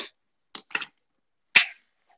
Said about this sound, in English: All right, ready? I'm gonna clap and then wait like a second and then Okay. restart it.